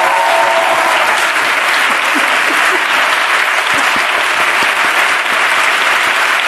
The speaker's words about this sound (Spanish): Y pido un aplauso para él antes de nada.